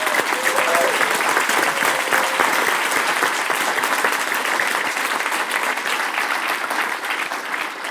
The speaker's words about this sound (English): I want all of you to give a huge round of applause to our media and marketing team for putting this event together today.